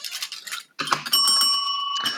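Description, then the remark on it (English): A bright little bell rings. Brief rattling and clinking come first, then a clear, sustained metallic tone rings out for about a second before another quick jingle. “I don't know where my bell is. Uh oh. Oh, here it is.”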